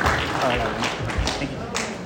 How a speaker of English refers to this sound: So yeah, give him a round of applause.